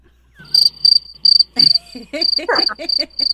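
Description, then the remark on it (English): Crickets chirp in steady, evenly spaced bursts of high trilling pulses, loud, with faint rustling night ambience underneath and no voices. “Crickets.”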